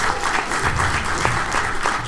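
An audience at a stand-up comedy show applauds steadily between comedians, many hands clapping in a dense, continuous patter at an even loudness with no voices above it.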